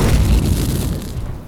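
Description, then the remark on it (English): A loud fiery burst from a cartoon sneeze that shoots out fire breath erupts at once, a deep booming roar with a hissing, rushing edge that fades slowly over about a second and a half. “Fire breath! Hey, watch where you're sneezing. You almost caught fire to my big fluffy cottontail.”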